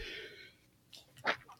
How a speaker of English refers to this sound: Hey, there's a sneeze. Oh my God. Excuse me.